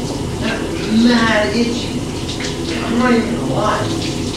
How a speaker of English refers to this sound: Did you start your shower first or did I? I think I started it first. I've been done for like a while now. I'm just letting this water really run